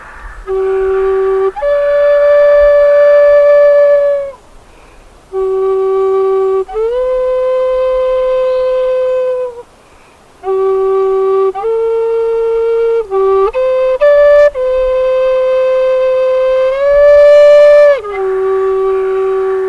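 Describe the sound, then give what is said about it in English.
A handmade elder wood whistle plays a simple, breathy melody of long held notes in several phrases with short pauses, pitches stepping and sliding up and down, loud and with no talking. “we've been making elder whistles or something like that, then it's like, I want to make one of those.”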